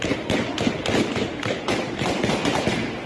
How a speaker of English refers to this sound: the Taliban, who have their own white flag, ended the occasion with gunfire shots into the crowds